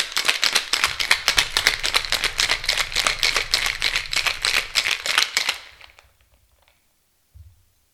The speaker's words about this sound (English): 3/4 of an ounce of the falernum liqueur. 3/4 of an ounce of the allspice dram. 3/4 of an ounce of your fresh lime juice. And give it a good shake.